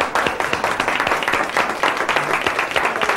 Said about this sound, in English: I want all the Donalds and all the Eddies to stand up and give yourselves a very strong round of applause.